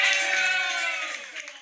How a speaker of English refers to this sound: you couldn't resist hitting that applause button just one more time before we said goodbye. What are you talking about? Those are adoring fans.